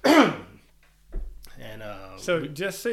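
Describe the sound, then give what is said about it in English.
A single loud cough or throat clear bursts out at the start, then a brief quiet pause and a soft thump before a voice begins talking. “I'm gonna edit all this little, like if you cough or take a sip, I'll just cut that out.”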